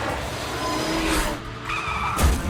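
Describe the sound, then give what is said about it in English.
Tires skid and screech across a freeway amid roaring car engines, with a loud impact thump near the end of a chaotic pileup, from the opening freeway wreck of the film Final Destination 2; no one speaks. “A massive and brutal freeway pileup is the answer.”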